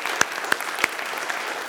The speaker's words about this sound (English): will you say amen and then clap for her? Amen. Amen. Amen. Amen.